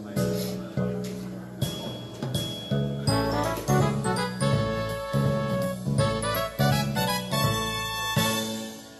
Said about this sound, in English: That fancy schmancy music is to remind you to silence your cell phone ringer. Several of you ignore that and we hear it later, but we appreciate it if you do.